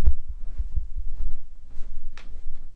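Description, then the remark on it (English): Knees popping while someone walks down the steps in a house: a series of dull, low thuds in an uneven rhythm, with one brief, sharper crackle near the end. Nobody speaks. “That's my knees popping.”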